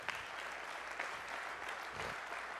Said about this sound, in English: What wasn't so easy is getting my heart in the right position. Now give the Lord a hand clap for that.